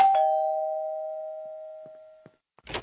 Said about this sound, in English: Mayor West, what are you doing here? I'm being a rascal and ringing people's doorbells and running away.